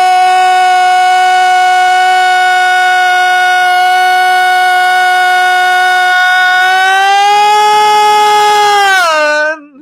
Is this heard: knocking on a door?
no